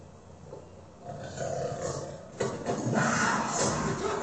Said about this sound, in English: There's a cougar in the car. I put it in there.